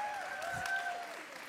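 An audience claps steadily and cheers, with a sustained high whistle-like tone running over the dense, even patter of applause for the whole short stretch.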